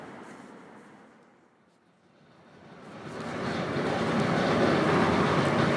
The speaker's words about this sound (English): So as you can hear, I'm recording this on the train, and there are people in this carriage, so I don't know if they can hear me. I don't think they can, because it's quite noisy, but I'm on the train again, which is quite nice.